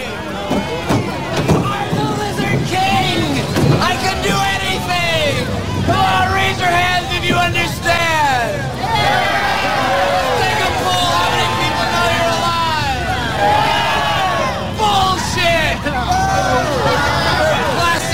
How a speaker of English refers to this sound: He's outside of the studio with a small crowd, not entirely sure what's going on, but he's got a message for us.